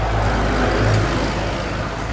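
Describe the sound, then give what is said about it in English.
A tractor's deep, steady engine rumble rolls by on a small country road, swelling slightly for a moment before easing off, with no voices over it. “I like that we nearly ran into the oncoming car of the way. Tractor, but Patience had the good sense to avoid it.”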